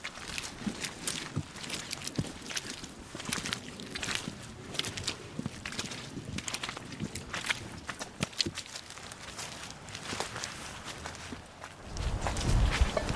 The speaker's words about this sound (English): I loved listening to people's squishy footsteps, and especially since I'm recording the sound.